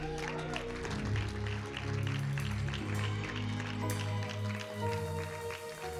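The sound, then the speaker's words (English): A church audience claps hands for Jesus in a dense, steady patter that lasts throughout, layered over sustained low keyboard or organ chords. “Give Jesus a hand clap.”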